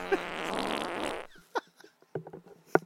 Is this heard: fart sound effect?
yes